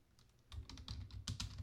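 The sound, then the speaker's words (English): Quick, irregular keystrokes clack on a computer keyboard, a short burst of typing with several clicks in rapid succession and no voices. “I didn't want to be slapping the keyboard while we're Randall recording.”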